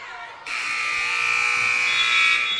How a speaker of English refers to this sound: And not a very strong final pass there. But the buzzer has rung. Your final score, 67-43, as the clock hits zero. Opelika takes the win in the final game of the Hardaway Classic.